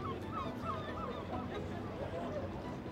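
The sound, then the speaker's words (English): Several seagull cries ring out in quick succession over a steady wash of crowd hubbub, moderately loud, like birds calling above a busy shoreline. “But one sound told them that they were getting close. The sound of seagulls.”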